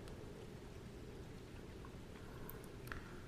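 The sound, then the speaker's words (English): Steady rain falls in a continuous soft hiss, with scattered brighter drops pattering on a surface now and then; no voices, just the even wash of rainfall. “Listen to the rain as your eyes are closed.”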